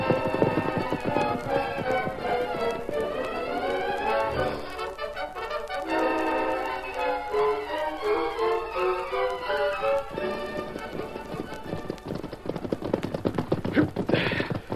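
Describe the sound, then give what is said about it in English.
Horses' hooves clip-clop in a steady, rapid rhythm, their sharp taps riding beneath a loud, sweeping orchestral score that fills most of the scene. “Horses behind these rocks.”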